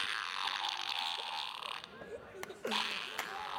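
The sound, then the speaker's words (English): A toy fart machine plays loud, buzzy fart noises in two long raspy bursts, with a brief gap of sputtering sounds and faint voices between them. “What have you got there? A fart machine! And it goes.”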